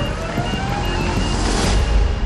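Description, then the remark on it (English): Dense city traffic rumbles steadily while a faint emergency siren wails through the noise, its tone held fairly level, with no voices. “Sirens are the soundtrack of the city, and many of those sirens are people in need.”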